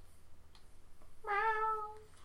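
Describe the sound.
A person's voice lets out a single drawn-out meow, a fairly loud imitation of a cat, falling slightly in pitch before trailing off over quiet background.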